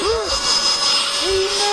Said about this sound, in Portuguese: Olha, este aspirador está à venda por 114,99€